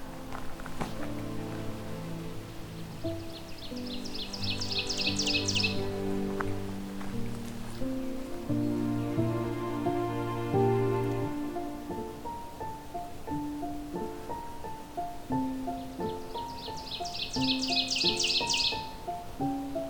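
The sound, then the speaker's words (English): An ovenbird sings twice, each song a quick, rising series of repeated sharp chips, over a steady backdrop of lower sustained tones. “There's an oven bird.”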